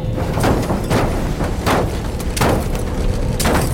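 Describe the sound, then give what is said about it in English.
A car lurches down a rough slope into a gully, a heavy low rumble broken by five loud, irregular thuds and bangs as it jolts and bottoms out. No voices. “You want me to drive into a gully?”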